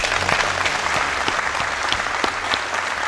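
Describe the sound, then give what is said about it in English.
A crowd applauds the nominee steadily, a dense patter of many hands clapping at an even, sustained loudness with scattered sharper claps poking through, and no voices. “A round of applause for the nominee.”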